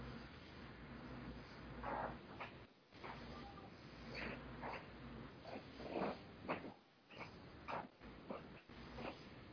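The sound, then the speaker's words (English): A dog makes faint, scattered snuffling and whimpering noises in short irregular bursts, with no one speaking. “Yes, babies, dogs, and people walking upstairs.”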